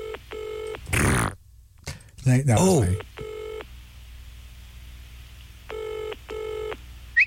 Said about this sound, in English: So phone call how did it start at the front? Starts with a ring, ring.